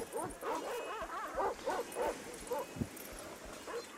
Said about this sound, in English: Things go. A lot quieter. Yeah, the sound of barking dogs has ceased.